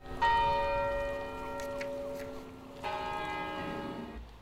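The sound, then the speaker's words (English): Two resonant church bell strikes in Madrid, Spain, tolled on a day of mourning in honor of those who died of coronavirus, the first at the start and a second about two and a half seconds later, each ringing out with a long humming decay. No voices. “In Madrid, bells tolled and flags were at half-staff in honor of those who have died, and the normally busy streets are practically empty.”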